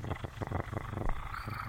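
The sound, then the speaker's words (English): A voice imitates a cat's purr: a steady, rumbling drone pulsing in quick rhythmic waves for a couple of seconds, with no words spoken. “It's a singular development of cat communications.”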